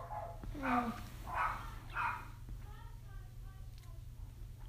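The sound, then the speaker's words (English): A pet dog barks three times in quick succession, then lets out a few thin, high whines, all over a steady low electrical hum. “Sorry, guys, I'm one of my dogs. I'm very sorry, guys.”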